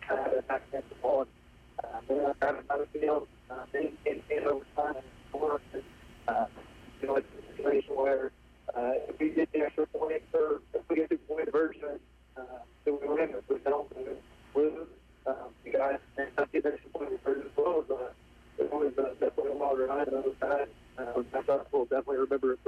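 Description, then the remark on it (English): A man talks over a thin, narrowband phone line, his voice muffled and tinny, with the connection briefly dropping out in several short gaps across the call. “you're kind of cutting out on us a little bit.”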